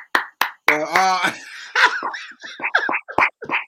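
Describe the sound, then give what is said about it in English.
A few people clap for Everton football club in sharp, irregular bursts while voices whoop and chatter over the claps, which stay loud and uneven throughout. “For those listening, wondering why we're clapping.”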